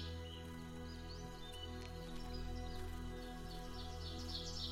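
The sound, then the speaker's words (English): Birds chirp and twitter faintly in the trees of the spring countryside under a sunny, partly cloudy sky, scattered calls coming and going over a steady low hum, with no one talking. “As you can hear, the birds are excited for spring, and they sing in the trees as they go about their business of gathering food and building their nests.”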